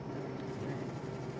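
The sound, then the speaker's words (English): Steady train station ambience: a continuous low rumble with a sustained droning hum layered over it, holding an even, moderately loud level throughout, with no clear voices. “That's because we're filming live at a train station.”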